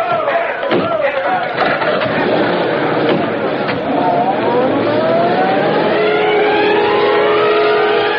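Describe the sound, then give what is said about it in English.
A police car engine revs up and pulls away in pursuit of a kidnapper, its pitch climbing steadily as it accelerates, amid a busy wash of shouting voices and commotion that fills the whole scene. “Into the cars, men!”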